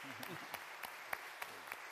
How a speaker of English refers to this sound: And I don't think it would be inappropriate to give her a show of applause, a show of thanks for that.